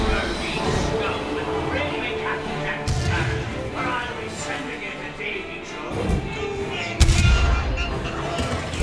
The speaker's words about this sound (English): Man, those cannons sound realistic today. Oh, that one seemed to hit the boat.